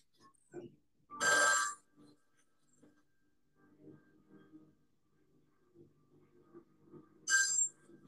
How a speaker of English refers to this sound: Random phone ringing. Who is that?